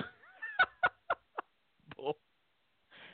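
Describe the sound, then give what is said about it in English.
A person's voice imitates a duck, letting out a quick run of short, nasal quacks, then a few more after a brief pause, fairly loud. “Yeah, I think it went something like quack quack quack quack quack quack quack quack quack.”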